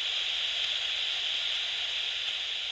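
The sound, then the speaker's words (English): Continuous crackling static hisses from bat detector devices that look a bit like walkie-talkies, held by a group of about 50 people looking for bats, a steady, unbroken wash of bright noise at a moderate level with no talking and no pauses. “They were blasting out static at full volume, and everyone was staring up at the sky.”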